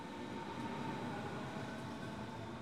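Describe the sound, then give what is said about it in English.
A tram rolls along its rails with a steady, continuous rumble and mechanical hum, fairly loud throughout, with no voices. “I scuttled onto my tram and took a spot by the bright red doors in a car empty of everyone except a sullen teenager.”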